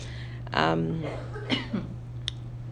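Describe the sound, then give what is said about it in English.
A harsh cough bursts out, followed by a couple of softer throaty coughs and a faint click, all over a steady low electrical hum. “I'm coughing too.”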